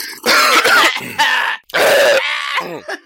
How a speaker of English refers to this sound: Having a slurp. Coughs out.